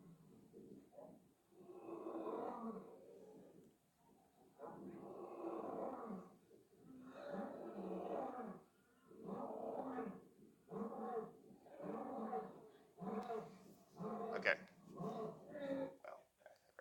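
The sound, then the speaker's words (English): A lion roars in a loud series of deep, rumbling bursts, each a second or two long, trailing off into shorter grunting calls toward the end, played from a video. “So has anyone here ever heard a lion's roar, like in person, before?”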